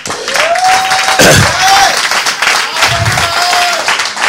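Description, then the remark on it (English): An audience claps in a dense, steady patter for several seconds, with a sustained musical tone humming over the applause and briefly dropping out midway. “My preaching is louder than your clap.”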